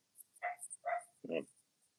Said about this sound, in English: Sorry, it's my dog, and he's about three rooms away as well. Yeah. He's just really excited.